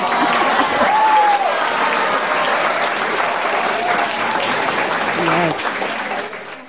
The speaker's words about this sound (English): Yes. I don't think those claps do justice for your performances.